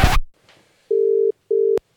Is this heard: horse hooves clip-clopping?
no